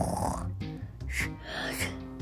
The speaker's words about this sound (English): That's a real yawn. I saw it.